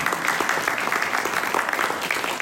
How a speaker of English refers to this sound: Vice President Dolly Hymus couldn't be here, but I want to give him a round of applause.